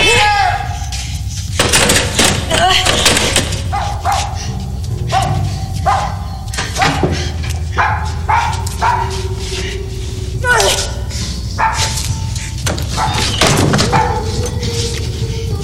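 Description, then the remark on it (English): A dog barks loudly and repeatedly, breaking into whimpers and yelps between the barks, while people shout and talk over the commotion. “Now, shut that dog up!”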